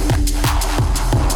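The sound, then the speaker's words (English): Someone imitates with their voice a hissing sound like a Fourth of July rocket, producing a steady run of about four short, breathy bursts in an even rhythm, fairly loud. “A hissing sound like this.”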